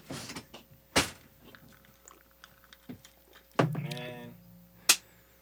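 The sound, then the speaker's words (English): A door is handled and shut: a few sharp wooden thuds spaced apart, one followed by a brief creaking squeal, fairly loud. “I didn't even close that door.”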